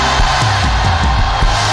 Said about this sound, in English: You need to lift a shout in this place today.